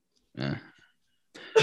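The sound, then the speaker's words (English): A sneeze: a short, throaty burst, a pause of about a second, then a louder, sharper explosive burst that cuts off at the end. No talking. “Bless you.”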